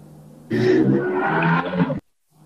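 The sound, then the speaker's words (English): A loud, harsh motorcycle engine roar with a low, buzzing growl, lasting about a second and a half before cutting off abruptly. No one speaks over it. “Sorry, there was a motorcycle.”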